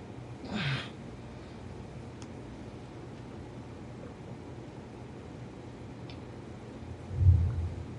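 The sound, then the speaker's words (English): A faint rumble of thunder rolls in near the end, low and brief, over a steady background hiss with a short muffled burst early on. “What was that? Is that thunder?”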